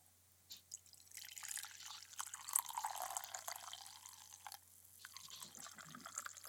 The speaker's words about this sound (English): Going to pour myself a lovely packed coffee, freshly brewed, freshly ground.